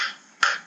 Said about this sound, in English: I can hear a bit of banging in the background. Is somebody working around you or? I think they're just, shaking out their clothes next door.